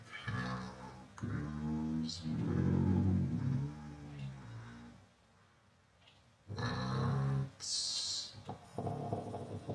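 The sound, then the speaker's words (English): Loud, growling car engines rev and rumble in overlapping bursts, like a traffic jam, with a brief lull midway before another surge of revving. “Sounds like a traffic jam.”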